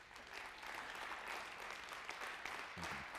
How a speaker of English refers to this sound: Can you give the Lord a hand clap for that?